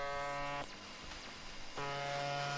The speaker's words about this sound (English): It sounds like some distortion and a buzz. Yeah. But somebody is broadcasting this somewhere in Russia.